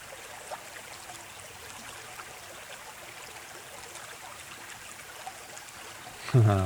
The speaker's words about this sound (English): Oh, and he's off. And he's off. That was him just having a little bath in the water, eh? Oh, and he's back again.